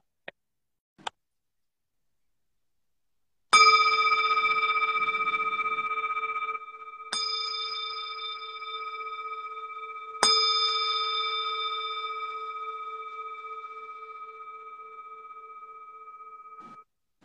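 A meditation bell is struck three times to start a sitting meditation, a few seconds apart, each strike a clear, bright ring whose long shimmering tone overlaps the next and fades slowly into silence. Two faint clicks come first.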